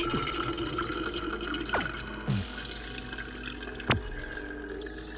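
A field recording of water: water splashes and gurgles continuously, with a few brief louder bubbly plops and drips standing out against the steady liquid wash; no voices.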